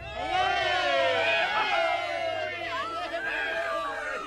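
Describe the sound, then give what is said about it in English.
Hundreds of people gathered on the bridge and river in Newport cheer and shout as the steamer from Bristol carrying Chartist leader John Frost comes into sight, many voices rising and overlapping in a loud, continuous roar that stays steady for the whole stretch. “As soon as the steamer was in sight, cheers and applause were heard.”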